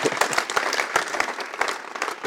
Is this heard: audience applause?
yes